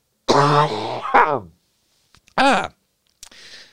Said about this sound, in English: Let me cough my lungs out here for a second.